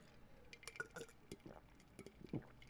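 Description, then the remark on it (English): Someone takes quiet sips of water: a few soft slurping, wet mouth sounds and faint glassy clinks, scattered over a couple of seconds with no talking. “Take a sip of my water.”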